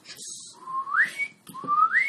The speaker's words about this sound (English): I whistle like that. Yes, our established signal.